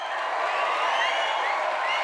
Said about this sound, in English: Everybody, give him a big round of applause.